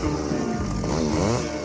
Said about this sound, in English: Cut 'em up, chop 'em down, chop 'em down, cut 'em up, chop 'em down, cut 'em up, chainsaw.